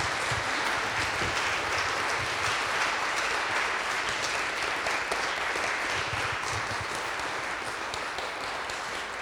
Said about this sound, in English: Another round of applause there. I think it's great. Thank you.